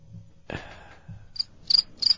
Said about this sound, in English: Cricket, cricket